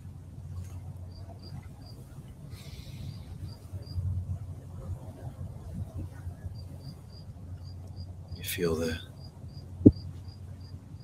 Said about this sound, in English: I just noticed the crickets.